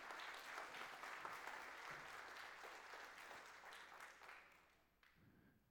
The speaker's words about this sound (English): Would you give Marcia and Beverly a big round of applause? Thank you, ladies.